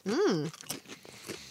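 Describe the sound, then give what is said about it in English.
A short appreciative hum from a voice, followed by a few crisp crunching bites of sea salt and black pepper flavored beetroot crisps, thicker than typical root vegetable chips, at irregular intervals, fairly quiet. “I like the crunch of them.”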